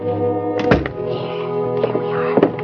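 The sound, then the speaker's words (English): A heavy wooden thud from a closet door in the Bradford Hotel being bumped as a body is stuffed inside, followed by a couple of softer knocks and scrapes, with a low steady hum running underneath. “I'll open the closet door. Put him in right there. Stick him in good.”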